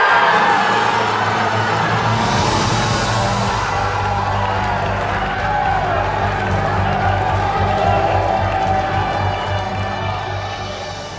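A large crowd, reacting to the announcement that Qatar will host the 2022 FIFA World Cup, roars continuously, a dense wash of screaming and booing with steady droning horn tones underneath, loud and sustained for the whole stretch before easing slightly at the end.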